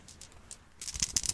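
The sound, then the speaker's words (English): Two dice clatter and rattle inside a cloth bag, a soft scattering of small clicks that builds into a louder, busier burst of hard clacks toward the end, with no talking. “You hear them in their bag.”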